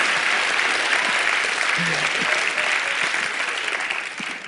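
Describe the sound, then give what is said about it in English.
An audience applauds steadily, a dense wash of clapping that holds strong for about four seconds before starting to thin and fade toward the end. “Yeah, clap for them, man. Come on.”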